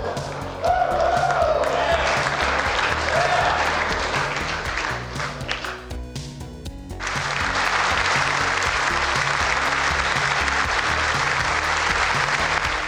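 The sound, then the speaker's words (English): A large crowd at a State of the Union address applauds Rush Limbaugh receiving the Presidential Medal of Freedom, loudly and steadily, with a brief dip midway before the clapping swells back to a sustained, dense roar; faint voices mix in underneath. “A well-deserved round of applause for Mr.”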